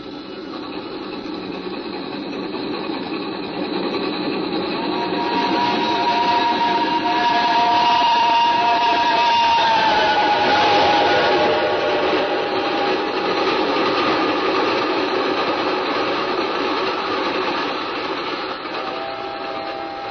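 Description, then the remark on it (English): A train roars past with a sustained, rushing rumble that swells to a peak midway and then eases off, high screeching tones squealing through the noise, as it disappears into a dark tunnel. No one speaks. “It had smashed by like a wounded monster screaming in pain and disappeared into the dark tunnel.”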